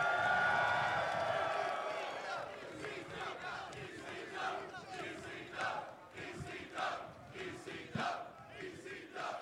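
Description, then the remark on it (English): A large wrestling crowd roars and cheers loudly in answer to a question about the ECW wrestling company, with shouts and whoops rising at the start, then settling into sustained applause and scattered yells that stay strong throughout. “Well, by applause or whatever, how many of you guys remember that company called ECW?”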